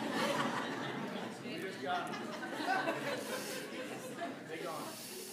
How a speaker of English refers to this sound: I pray that those loud geese would shut up.